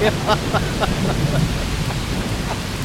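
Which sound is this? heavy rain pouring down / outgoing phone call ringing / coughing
heavy rain pouring down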